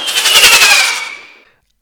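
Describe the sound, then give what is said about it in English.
A loud gunshot sound effect bursts out as a rapid rattling crackle with a ringing tone, fading away over about a second and a half before a brief new noise cuts in. “Now play a gunshot sound effect.”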